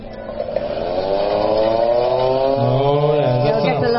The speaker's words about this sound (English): And it gets a lot louder. Like if I twist it, see that? It gets louder. Well, so that was the air raid siren. That's the air raid siren.